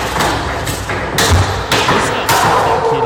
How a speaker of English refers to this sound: Ah! Those are spanks. Is he those clapping? Are the spanks. No, those are the spanks.